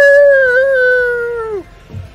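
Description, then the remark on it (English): A single long dire wolf howl rings out loud, holding a steady pitch for over a second before sliding down and breaking off, followed by a brief low rustle. “Those are dire wolves. It's a lot of wolves.”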